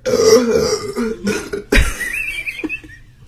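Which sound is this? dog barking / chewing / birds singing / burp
burp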